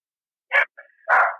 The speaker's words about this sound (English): Oh, here's my dog barking.